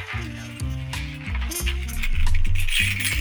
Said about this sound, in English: Can you hear that? These are my keys. I have the keys with that ASMR activation key sound energy.